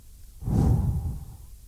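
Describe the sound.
A single forceful exhale of breath, fairly loud, breathing on someone, rushing out for about a second before trailing off into a soft, airy fade. No talking.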